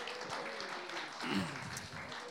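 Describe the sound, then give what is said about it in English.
A church audience at Riverside claps steadily throughout, a dense wash of applause with scattered voices cheering and whooping, swelling briefly in the middle before settling back. “Give yourself a cheer, Riverside.”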